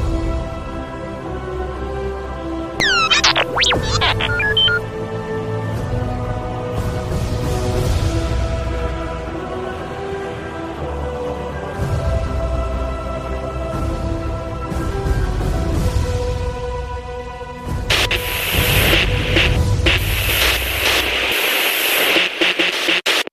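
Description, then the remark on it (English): Crackling radio static with layered electronic hums and warbling whistle sweeps, ending in a loud burst of harsh hissing noise; no one speaks. “Ready to send that transmission to Echo Base?”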